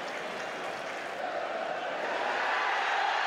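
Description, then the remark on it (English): A huge stadium crowd in South Africa, with Nelson Mandela cheering along, roars continuously and densely with no breaks as the president goes to captain Francois Pienaar in 1995, swelling slightly louder toward the end. “And Nelson Mandela is cheering along with the whole of the stadium.”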